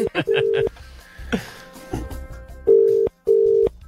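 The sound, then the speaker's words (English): A phone call being placed to someone's mum: a few quick electronic tones, a short muffled pause, then two long, steady ringback tones in a row, clear as the line rings out. “Let's ring her and see if she'll go on Farmer Wants a Wife like Stav has suggested.”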